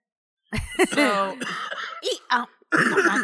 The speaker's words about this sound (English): I like the timbre of his cough. Yeah. Yeah. There's a real jazz pattern to it.